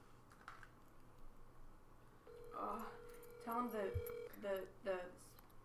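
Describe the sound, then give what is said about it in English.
Soft tapping on a phone screen, then a steady electronic tone as a regular phone call is placed to a man, with people talking casually over it. “Here, let me phone call him regular.”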